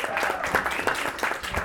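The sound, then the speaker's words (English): An audience applauding, with dense, steady clapping from many hands that fills the short moment at an even, fairly loud level without letting up. “Ladies and gentlemen, please put your hands together”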